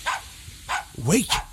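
A dog barks in a few short, sharp bursts spaced apart, the last ones blending into a higher, wavering yelp, clear with no talking around them.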